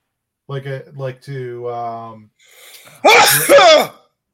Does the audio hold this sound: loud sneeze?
yes